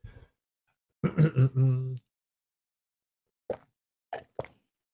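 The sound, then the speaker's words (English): Someone drinking water from a glass: a short voiced gulp, a pause, then three quick wet swallowing plops spaced apart, all fairly soft with quiet gaps between and no talking. “Speaking of breaks, I need to get a glass of water. Excuse me, a drink of water.”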